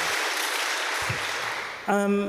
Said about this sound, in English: But yeah, we need to give him a round of applause.